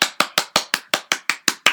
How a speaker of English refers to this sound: I clapped. Woohoo! I clapped for you because I do not want you to die listening to my podcast.